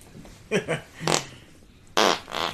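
Short fart noises, a couple of quick sputters followed by a longer buzzy, low-pitched one, then two loud hissing bursts. No talking.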